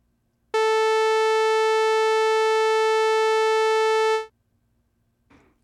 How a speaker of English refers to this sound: Okay, so now let's move on to a saw wave. Here's what that sounds like.